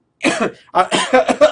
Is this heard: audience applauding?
no